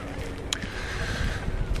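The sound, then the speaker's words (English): Steady outdoor ambience by a river while someone walks in the late afternoon: a low, wind-buffeted rumble with a water-traffic murmur, a faint sustained tone, and one brief sharp tick partway through. No one speaks. “But yeah, I'm walking on the late afternoon by the river.”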